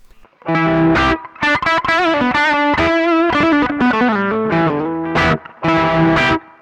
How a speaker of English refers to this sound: So just by backing up from the volume there, we get some nice sort of overdriven tones that are less extreme.